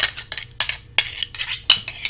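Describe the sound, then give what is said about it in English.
Deer antlers clashed and rattled together while hunting to call deer in, making them think males are fighting: a quick series of sharp, bright clicks and clacks, an irregular burst of hard knocking with no voices. “That's how you call deer in sometimes.”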